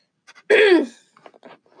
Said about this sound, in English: Sorry if I clear my throat all the time.